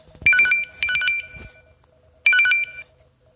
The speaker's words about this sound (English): Anyway, my phone just rang.